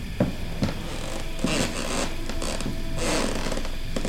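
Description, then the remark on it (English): The wooden door of a dilapidated cabin creaks open, with a few short ticking knocks followed by two long, raspy groaning creaks. No voices. “The door opened easily enough, complaining loudly as he stalked his way inside.”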